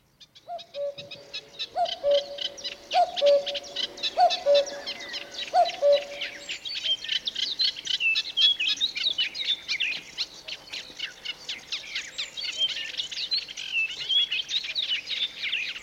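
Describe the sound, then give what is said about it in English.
Bird calls from a nature film about the cuckoo: a dense, continuous chorus of high chirping and twittering birds, joined early on by about five low, hooting two-note calls that repeat at a steady pace and then stop. “I don't know if you're familiar with the cuckoo bird or not, but by the end of this video, you probably won't be happy with them.”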